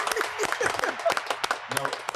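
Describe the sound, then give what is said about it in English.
An audience claps in a brief burst of scattered, overlapping hand claps at moderate loudness, with voices calling out and chattering beneath the applause. “Y'all can clap for the lawyers, man.”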